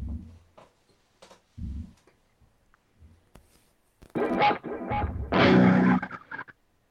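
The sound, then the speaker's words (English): Clean, untreated electric guitar: a few soft, scattered low plucks at first, then loud bursts of bright, ringing chords strummed in quick succession before fading out. “I'll play a little untreated electric guitar, kind of just classic sounds,”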